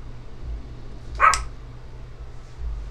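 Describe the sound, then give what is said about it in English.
A single short, high-pitched puppy bark rings out once over a low steady background hum, with no one talking. “But this puppy's gonna make me edit out all the barking.”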